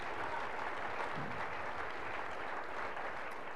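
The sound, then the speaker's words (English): A crowd claps for the Lord, steadily and densely for several seconds, a continuous wash of many hands at even loudness with no voices standing out above it. “Oh, if you're clapping for the Lord, clap for him.”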